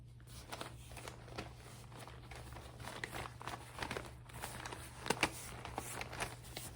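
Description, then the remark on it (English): Continuous rustling and light clicking as a pencil case full of pens, pencils and markers is handled and shifted about, with a couple of sharper clacks near the end over a faint steady hum. “This is where I keep all of my pens and pencils and markers.”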